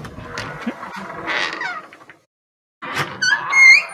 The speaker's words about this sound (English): No one shuts a door like that. What is that? Is that an 8-sided door? What is that? He really left that time. It just took. I don't. He was being dramatic. I don't know. God, that was a that was a revolving wooden door. Is what that was.